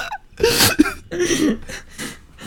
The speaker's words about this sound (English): Was that your mom sneezing? Did you hear that? I heard it on the mic.